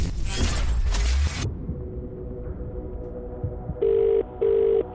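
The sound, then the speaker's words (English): A telephone rings with two quick back-to-back bursts near the end as a radio contest call is placed across the Hits Radio Network, clear and fairly loud, following a brief loud rushing noise at the start and a quiet pause. “One ring. Two rings.”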